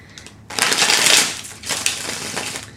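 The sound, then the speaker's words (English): Crisp papery rustling as a deck of tarot cards is reshuffled after the cards touched the ground, one long loud riffle followed by a second, softer shuffling pass with fine clicking edges; no voices. “Let me get a quick shuffle since they did touch the ground, okay?”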